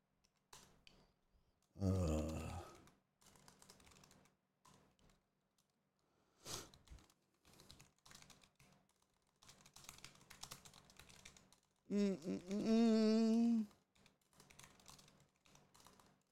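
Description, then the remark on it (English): Steady clatter of typing on a computer keyboard as someone types in a list of prizes, moderately loud, with rapid irregular key clicks broken by short pauses, plus a couple of brief louder bursts of vocal noise, like a groan or grunt. “I'm typing them in now, and then you'll learn what they are.”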